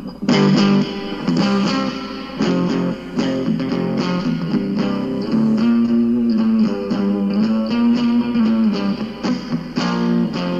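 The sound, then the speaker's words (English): A distorted electric guitar plays an intro alone with the distortion turned up, loud, with a steady run of chugging chords and sustained notes filling the whole stretch without any voices. “Oh, yeah, play it right on your guitar.”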